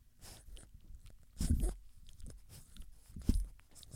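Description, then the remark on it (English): An 8-week-old puppy named Peanut licks a microphone: wet, smacking licks and mouth noises rub against it in irregular bursts, with two louder, crunchy swipes standing out amid soft breathing and handling rustle. “You're licking the microphone.”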